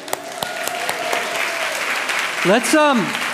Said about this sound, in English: Okay, give your group a round of applause.